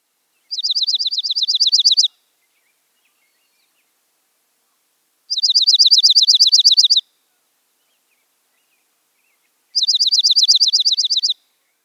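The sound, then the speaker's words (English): Three bright, high-pitched trills of a dark-eyed junco ring out in turn, each a rapid, even, musical run of similar notes lasting about a second and a half, separated by several seconds of silence. Clear, no voices. “They have a relatively slow overall tempo and a narrow range of pitch, which produces a more musical sound.”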